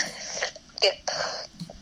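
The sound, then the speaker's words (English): A voice imitates raspy, phlegmy wheezing breaths as the phlegmy voice of a character: three close, noisy bursts of breathing with short gaps between them, the last one longest, and no words spoken. “What kind of preparation and pacing, stamina-wise, that you need to use for doing the phlegmy voice for the character?”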